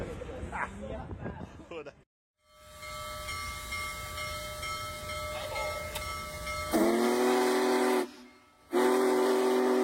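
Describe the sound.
A train whistle blows two loud, sustained blasts, the second following a brief pause, over a steady rolling rumble of the train. A voice is heard briefly at the start.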